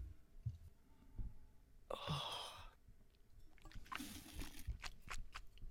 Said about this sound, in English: All right. Let me take one sip of water before.